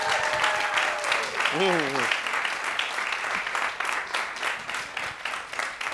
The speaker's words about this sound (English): So can you give a round of applause for the one they call ….